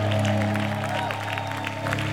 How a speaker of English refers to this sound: Somebody clap about it. You don't look excited, do you? Are you?